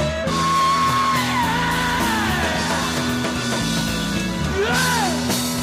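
A rock singer screams in a live recording over a loud, dense band, his voice rising and sliding in long strained wails, with a final swooping cry near the end as the music keeps pounding.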